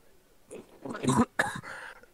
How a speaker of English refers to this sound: He coughs. Yeah, he actually coughs because he's very old.